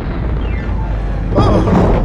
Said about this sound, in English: You have pressed the blast off button. Blast off? Initiating launch.